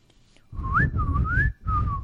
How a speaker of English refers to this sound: I knew you were going to whistle.